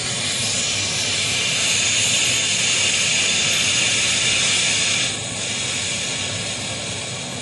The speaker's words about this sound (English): Rubber boat all spread out. All right. Puncture the compressed air capsule.